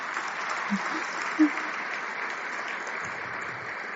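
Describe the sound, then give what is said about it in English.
An audience claps steadily for the full four seconds, a dense, even wash of many hands with no clear break, applauding visiting MLAs. A couple of faint low thumps poke through early on. “So we almost have enough people here that we could do a caucus meeting, so just give them a round of applause.”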